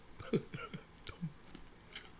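A quiet sip of a shot of Fireball cinnamon whisky, with soft wet mouth clicks and a swallow spread over a couple of seconds, faint breathy sounds around it and no clear talking.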